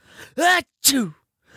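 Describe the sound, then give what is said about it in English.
A loud sneeze belted out as a shouted, voiced "ah-choo" in two strained bursts, a rising cry followed by a sharp hissing release that falls away, with a brief quiet between. “literally sneezing by saying, screaming, a chew”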